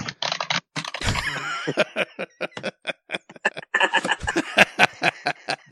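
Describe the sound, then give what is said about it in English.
Rapid, loud clacking of a computer keyboard as someone types a Google search, keystrokes fired off in quick irregular bursts, with a brief heavier thump near the start. “Most obnoxious keyboard.”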